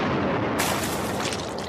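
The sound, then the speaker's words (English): A loud, booming cannon blast with a rushing roar that sharpens into a bright, crackling burst partway through and sustains to the end, heard alone with no voices. “And a lot of glue, and they put the glue on the wall, then they took all the writings and stuffed them into a cannon and shot the cannon at the wall.”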